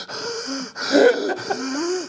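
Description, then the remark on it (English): A person imitates the heavy, exhausted breathing of someone taking a knee, with a few loud, ragged gasps and wheezing breaths in quick succession. “You see Jason taking a knee? He's breathing like this.”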